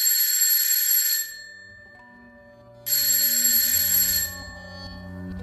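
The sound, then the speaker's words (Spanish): An old telephone bell rings twice in loud, bright bursts of about a second each, separated by a short pause, with faint low tones humming beneath, as a call is placed to a seminary. “Se fue corriendo al teléfono y llamó al seminario.”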